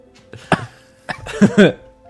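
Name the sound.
coughing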